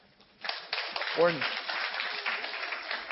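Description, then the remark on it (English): A church audience breaks into applause after a brief quiet moment: a dense, steady wash of clapping that holds throughout, with a short vocal whoop rising briefly partway through. “We've baptized over 100 people in 5 years for a church plant. That's applaud-worthy.”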